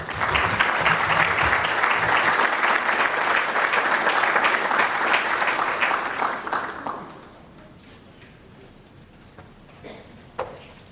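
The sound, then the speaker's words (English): An audience applauds to welcome Treasury Undersecretary Sigal Mandelker at a discussion on the impact of sanctions, a dense patter of many hands clapping that holds strong for about six seconds, then quickly fades to a few scattered claps and near quiet. “We're very fortunate to have her here, so could I ask you, with your very warm applause, please welcome Undersecretary Sigal Mandelker.”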